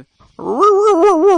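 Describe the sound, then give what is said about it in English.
A voice imitates a car engine turning over as the ignition is turned: a loud, sustained growling drone lasting about a second, its pitch wobbling in rhythmic pulses like a starter cranking. “As it's turning over”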